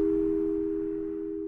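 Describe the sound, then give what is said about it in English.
After someone hangs up the phone, a steady, low electronic busy tone hums continuously at moderate volume, the line's signal left sounding on its own with no voices or other sounds. “I never accept the sound of someone putting the phone down as a no.”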